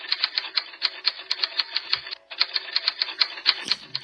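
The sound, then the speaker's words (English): Steady, rapid typewriter key clacks, a crisp run of strikes with a brief pause midway before the typing resumes. No voices are present. “Typewriter.”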